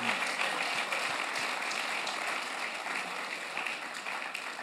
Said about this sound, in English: You are not slapping your hands very well. Slap your hands to Jesus.